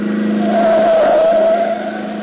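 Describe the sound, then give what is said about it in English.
A car engine roars loudly as it speeds past on the wrong side of the street, its whine climbing toward a peak and then dropping as it pulls away, all within a couple of seconds. “That car coming. Boy, is he traveling.”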